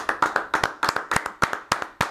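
Several people clap their hands together in a brisk, uneven rhythm, with sharp overlapping claps, steady for a couple of seconds, no voices present; applause welcoming a football head coach at the start of interviews.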